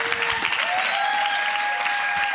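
A crowd claps steadily in a dense wash of applause, with a thin, sustained tone ringing faintly above it.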